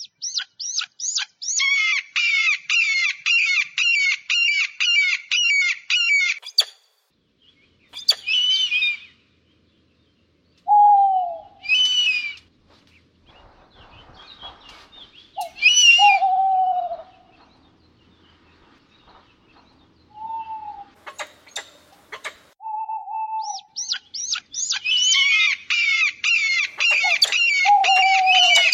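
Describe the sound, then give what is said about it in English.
Calls of predatory birds: loud, rapid chattering bursts open and close the passage, with sharp screeches and short, lower whistled notes scattered between them. No one speaks. “Let's go now to the sounds of predatory birds.”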